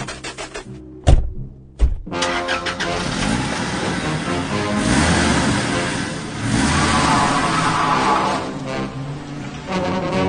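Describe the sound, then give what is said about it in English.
A car engine cranks over with a couple of sharp bursts, then revs up loudly and keeps roaring as the vehicle pulls away, sustained. “Get in the car! Get in the car!”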